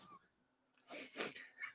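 A cat gives a brief, strained vocal noise, a couple of quick rising yowls close together, fairly quiet, following a moment of near silence.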